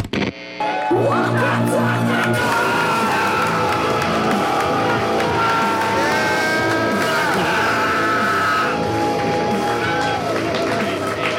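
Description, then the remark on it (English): A live audience cheers and whoops loudly and steadily for about eleven seconds, a dense roar of many voices with shrill yells rising above it and no clear pause. “Thank you for that energy that was not at all coerced.”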